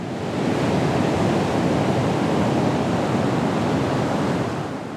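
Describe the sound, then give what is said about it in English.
A steady, full-bodied wash of ocean surf breaking on the shore rolls on without pause, a fairly loud rushing roar of waves with no voices present. “I smell the salty air, and I hear the waves. The waves feel like breathing in and out.”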